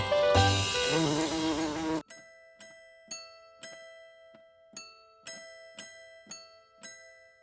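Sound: wasp buzzing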